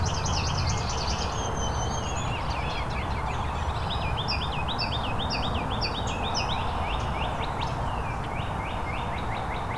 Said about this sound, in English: Some of the red-winged blackbirds.